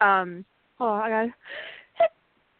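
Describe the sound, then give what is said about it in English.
A sneeze: two drawn-out, voiced catching breaths, then a breathy hiss and one short, sharp burst to finish, all fairly loud with no talking. “Sorry, I had to sneeze.”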